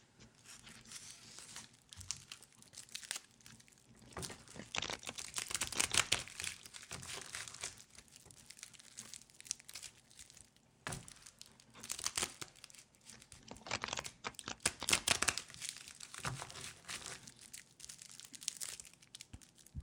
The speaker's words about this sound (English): Just one moment while we shuffle our cards.